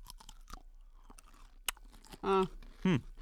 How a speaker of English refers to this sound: So I'm going to take. Let's take a bite.